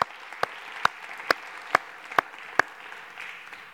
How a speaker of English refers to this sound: Applause for that. That was great, wasn't it?